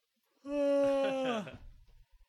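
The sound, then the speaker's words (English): A single drawn-out human yawn, voiced and fairly loud, holding a steady pitch before sliding down and trailing off into a breathy exhale. “Yawn break.”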